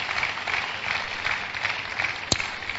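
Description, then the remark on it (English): An audience claps for Jesus together in a steady, dense wash of applause that stays fairly even throughout, with one sharper single clap standing out near the end. “Clap for Jesus one more time.”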